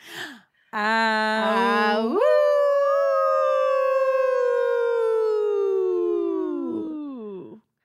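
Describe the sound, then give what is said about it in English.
A single wolf-like howl, loud: a brief wavering opening note leaps higher, then holds and slowly slides downward for several seconds before trailing off. No talking. “So now I'm going to say the line that will get us to our howl.”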